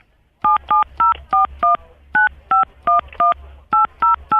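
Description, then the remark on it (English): A rapid series of about thirteen telephone keypad tones, short dual-pitched beeps as an ID number is punched into a phone during a call to a customer service line, in quick succession with brief pauses between groups, over a low steady hum, with no talking. “Tell me what your ID number is. Don't punch it in on the phone.”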